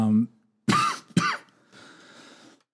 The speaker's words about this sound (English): oh, sorry about that. Another cough came in.